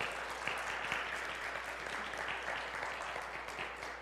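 A crowd applauds steadily, a dense wash of many hands clapping at once that holds at an even, fairly loud level for several seconds without anyone speaking.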